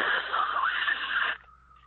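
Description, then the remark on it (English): A voice imitates radio static with a steady, harsh hissing burst lasting over a second, then cuts off abruptly, leaving a faint lingering tone. No words are spoken. “But you're protesting because there was static.”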